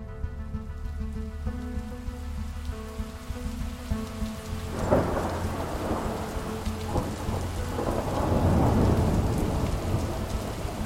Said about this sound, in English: Then there was a storm the next day. So we got stormed on, which was just incredible, being in this big storm on the wall, engulfed in cloud.